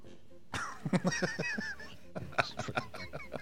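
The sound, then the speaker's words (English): A deep, raspy smoker's cough comes in two hacking fits of rapid, honking bursts, harsh and hoarse with a wet rattle, separated by a brief pause. “That was a smoker's cough right there.”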